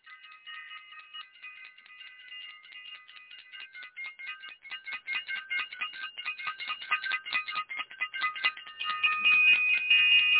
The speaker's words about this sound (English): I want to ring the bell for Self-Invested and ring the bell for the Self-Invested workshop.